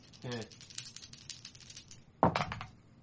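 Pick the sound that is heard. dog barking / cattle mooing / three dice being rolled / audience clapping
three dice being rolled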